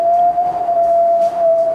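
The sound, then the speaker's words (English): A person whistles from the gut, one long, steady mid-pitched note mimicking whistling wind, with an airy breath hiss around it and a slight waver in pitch throughout. “You gotta sound like wind.”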